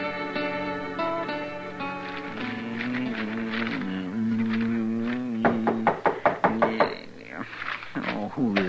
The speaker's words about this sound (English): Don't you open the door? Maybe you'll find out, Chester. I never heard of nobody knocking on this door before.